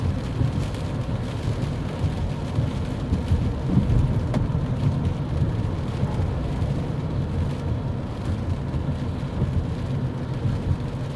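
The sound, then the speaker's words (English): Steady, heavy thunderstorm rain pours continuously onto a car whose trunk stands open with a mower inside. A dense hiss is layered over a deep, rolling low rumble, with no voices and no breaks in the downpour. “It's raining right now, and I have a trunk open with a mower in it.”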